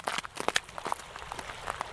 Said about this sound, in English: We're walking on the Heatherwood Trail on a cold, gray, cloudy day. Right now there's a lot of melted and refrozen snow on the trail, so we're making a lot of crunchy noise as we walk.